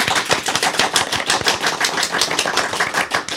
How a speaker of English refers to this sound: Well, thank you to both of our guests for coming along today. Big round of applause